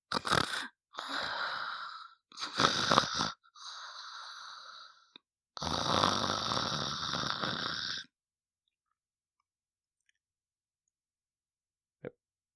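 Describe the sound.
A person makes exaggerated snoring noises with the voice, four raspy, wheezing snore bursts of varying length, then silence with a single faint click near the end.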